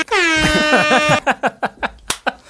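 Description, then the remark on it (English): A loud air horn blares in one long wavering blast, then fires off a rapid series of about six short, sharp honks. “That's why we have the air horn. Oh. You mean this one?”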